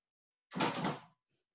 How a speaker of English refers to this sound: Hold on. I'm going to try to open this door here real quick.